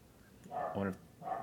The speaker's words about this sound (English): Not actually joking about the dogs. The dogs are just being barky right now.